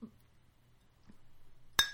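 A single sharp glass clink rings out near the end after a quiet stretch, bright, with a shimmering tail like two glasses touched in a toast to Slink, a wall weasel.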